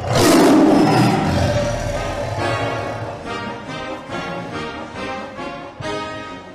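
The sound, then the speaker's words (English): A loud tiger roar soundboard sound effect bursts out at the start, a deep growling blast that rumbles on and fades into lower, rolling growls over several seconds, with no talking. “As far as that one goes, that topic, I'm going to split it between Hail to the Victors and the Tiger Roar.”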